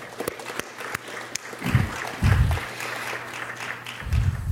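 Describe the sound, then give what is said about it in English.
An audience breaks into applause, a dense wash of clapping from many hands that holds steady for several seconds at moderate volume, with a few sharper claps standing out at the start. “And I think that deserves a round of applause right there.”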